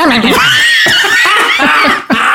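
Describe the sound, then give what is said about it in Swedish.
A person does a loud, shrill vocal imitation of a horse neighing, a quavering whinny with rising and falling pitch lasting a couple of seconds. “Gnägga som en häst.”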